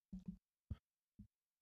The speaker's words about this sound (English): Oh, hiccups.